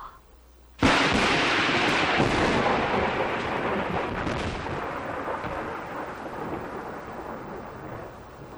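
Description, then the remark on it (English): At night at a mansion in Inverness, after a brief hush, a sudden loud crack of thunder bursts in and rolls on through steady heavy rain, slowly fading but never dying out. No one speaks. “As we look in on the mansion in Inverness, night has fallen. The rain continues.”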